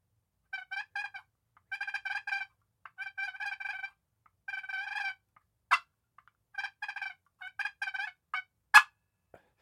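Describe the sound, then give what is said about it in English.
A turkey call produces a series of soft, rolling turkey purrs in short trilling bursts with brief pauses between them, punctuated by a couple of sharp clicks, fairly quiet with no talking. “Then we got some purrs.”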